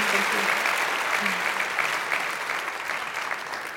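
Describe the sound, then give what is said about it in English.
An audience claps steadily for the evening's guests, a dense, even wash of applause that holds for several seconds before easing off slightly toward the end. “Please, please, please give them a huge round of applause.”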